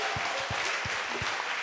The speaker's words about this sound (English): Applaudissons pour le Seigneur. Let's clap for the Lord.